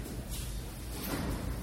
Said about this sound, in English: Someone else opens the door. Hang on!